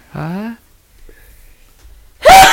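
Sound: sneeze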